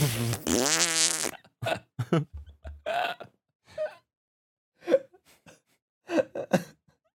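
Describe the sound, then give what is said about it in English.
A person coughs and farts at the same time: a loud, buzzy fart blast lasting about a second, followed by a series of short, choppy bursts of coughs and grunts spaced irregularly. “Whoever tried to like cough and fart at the same time?”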